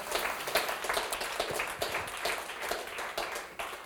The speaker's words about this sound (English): Let's rise to our feet on Thursdays. We begin daytime prayer service. As you do, give Jesus a great big hand clap all over the sanctuary.